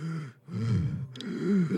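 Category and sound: vocal imitation, voice imitating heavy breathing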